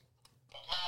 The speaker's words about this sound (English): Oh, I need a buzzer. I was like, let's just keep going. See if you get a buzzer.